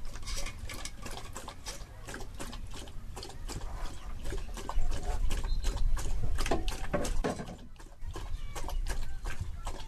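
Solo, a trained hunter dog, laps water from his water dish in quick, wet, rhythmic slurps, a steady run of splashy tongue strokes that keeps going for several seconds with no voices.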